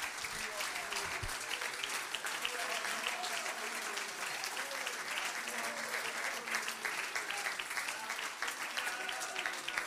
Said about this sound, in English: Let's clap our hands. Would you do that to the Lord?